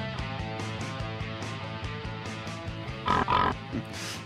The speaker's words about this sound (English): Is that a pig? It's supposed to be. I don't have any animal noises.